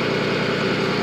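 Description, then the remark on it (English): A truck right in front of the person recording idles with a steady, droning rumble and a constant hum, holding an even loudness without any change in rhythm for the whole moment. No one speaks. “Let me know if you have a hard time hearing me because there's a truck right in front of me.”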